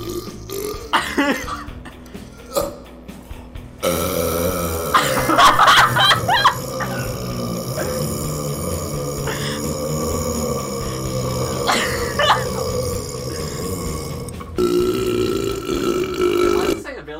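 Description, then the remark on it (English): Long, loud, drawn-out burps roll on one after another, deep and croaking, played back from a YouTube video over steady background noise, with brief faint laughter from people. “No, his whole YouTube page is just burping.”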